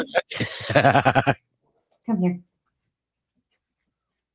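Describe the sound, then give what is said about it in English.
A small Havanese dog lets out a high, wavering whimper with a quivering, bleat-like pulse for about a second, then falls quiet before a person briefly speaks. “He's a Havanese, so it's the family of like the Bichon Frise.”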